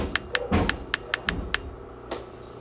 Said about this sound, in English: What's going on with this refrigerator? I mean, I closed it. I just put a little force on it, but is it the soda that's making it not able to? I think the door is too heavy. Alright, let me move some stuff.